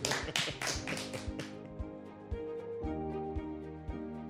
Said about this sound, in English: So may I congratulate you, and I'm going to give you a round of applause in return for the one you gave me.